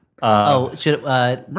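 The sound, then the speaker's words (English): A human voice imitates a house cat's meows: two drawn-out, tonal meows, with the start of a third cut off at the end. “Also house cat.”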